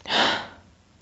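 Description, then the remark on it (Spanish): A person imitates the breathing a dog makes in a stressful situation with one forceful, airy huff, loud at first and then trailing off within half a second. “A veces se sacuden. A veces hacen esta respiración.”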